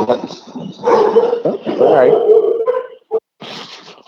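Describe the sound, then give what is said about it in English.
The speaker's own dogs bark and yip in a loud, uneven burst over a few seconds, with a voice talking at the same time before things briefly go quiet. “Sorry about that. Those are my dogs.”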